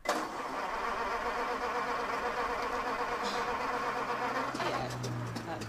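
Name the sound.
car engine revving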